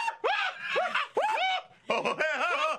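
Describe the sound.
A person loudly mimics a screaming goat, letting out several strained, wavering bleats in quick bursts, harsh and nasal, with brief gaps between cries.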